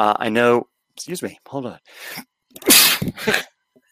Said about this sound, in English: Hey, first time. Bless you. Thank you. Yeah, it's like all of a sudden it just comes on.